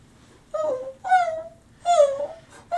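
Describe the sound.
Three high, thin whimpers in a row, each a short plaintive whine that slides downward, fairly loud like a tiny pup crying in pain, with brief quiet gaps between them.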